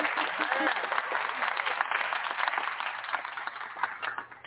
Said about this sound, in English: Can we please give him a round of applause?